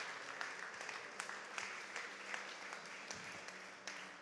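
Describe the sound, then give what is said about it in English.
A church audience claps in praise to God after a prayer, steady dense overlapping applause, with sharper individual claps popping out above the continuous patter, sustained at an even level throughout. “Would you give God a hand clap of praise right where you're at?”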